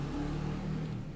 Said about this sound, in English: Hey, can the motorbike shut up? Noisy, ah.